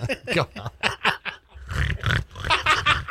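A pig snorts and oinks in a quick, busy run of grunts, starting with sharper squeaky snorts and settling into deeper, rumbling grunts, fairly loud with no talking.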